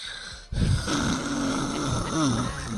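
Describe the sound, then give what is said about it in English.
A loud, rough snore from someone who has gained weight starts abruptly and rasps on continuously for a couple of seconds, harsh, with a throaty rise near the end. It may be a voice imitating snoring. “That snoring got you all jacked up because you done picked up all this weight, heavy ass chest, just in there, just pressing on your lungs.”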